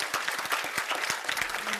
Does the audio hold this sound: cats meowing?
no